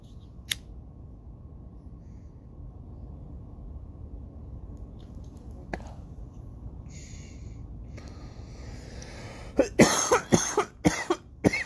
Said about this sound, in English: I love the coughing on here. I'm sorry, but that's awesome.